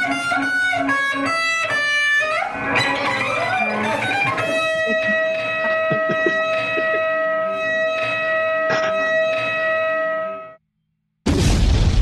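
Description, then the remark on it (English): A loud, synthetic explosion effect bursts out amid wailing siren-like electronic tones, then a single sustained tone rings on and cuts off abruptly, followed by a brief blast of noise. “It's the explosion for me every time.”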